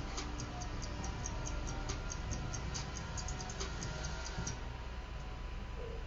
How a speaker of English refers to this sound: As you guys hopefully heard, we're listening to see if the stopwatch poked through, and that was the thing that you mainly heard at a very low level, because, as Steve said, they oftentimes will mix cues really, really low.